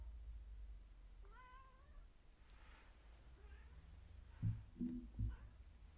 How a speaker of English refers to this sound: Hang on. My cat's screaming.